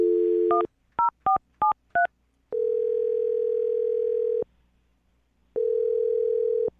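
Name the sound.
telephone number being dialed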